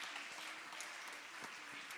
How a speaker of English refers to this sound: And if we'll praise him, there's a mighty revival coming. Come on, clap your hands if you believe it.